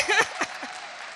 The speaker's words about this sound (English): Thank you. And you should be clapping. It's good news.